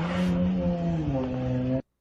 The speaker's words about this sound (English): There's that same Charger is outside his house. He goes outside because his friend is helping him with this video. That's his same vehicle. From... And then the car just peels the fuck out.